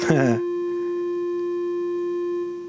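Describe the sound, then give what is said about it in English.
A steady, unbroken telephone dial tone, made of two overlapped frequency tones, hums at a constant low pitch, holding level for over two seconds after a brief burst of voice at the very start. “Okay, a dial tone starts out, all right, let me see something.”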